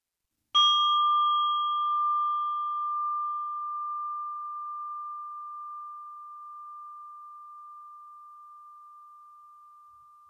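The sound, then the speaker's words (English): A meditation bell is struck once, giving a clear ringing tone with a brief bright overtone that fades quickly, leaving a steady mid-pitched hum that slowly decays over about ten seconds. “And I'm inviting the bell as an invitation for you to concentrate on your practice and specifically your breathing for the moment.”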